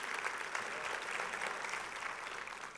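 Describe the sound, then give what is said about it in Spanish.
An audience applauds steadily in praise of the Lord, a dense wash of many hands clapping at an even level throughout, with no voices standing out. “Un aplauso al Señor.”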